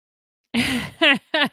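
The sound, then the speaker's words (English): Heavy breathing from a man who has just come back from the fridge: a long, noisy breathy exhale followed by two short voiced huffs in quick succession, then silence. “I hear him breathing.”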